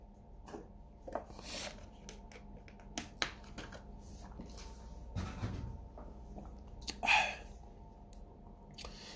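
Quiet mouth sounds of someone sipping water: scattered wet clicks and smacks, a soft gulping swallow midway, and a few more lip and tongue noises, with no talking.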